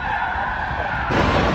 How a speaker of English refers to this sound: Watch as the teen behind the wheel floors the stolen car.